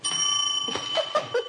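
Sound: small bell ringing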